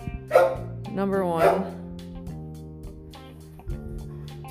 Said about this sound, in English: Oh my god, and this damn dog is gonna go nuts now.